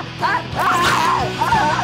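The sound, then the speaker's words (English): A dog barks and yips in a quick, excited series of high, bouncing calls, loud, with a couple of brief whimpering tones between the barks. “Hey, bullies. What a brave dog.”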